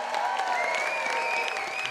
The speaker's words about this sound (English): So please give a nice round of applause for Rosie Perez.